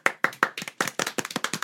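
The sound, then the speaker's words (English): A quick burst of sharp hand claps used as a sound effect to introduce a hot-topics segment, about a dozen in irregular rhythm, bright and fairly loud, with no voices. “Now that's where we need to add in the claps.”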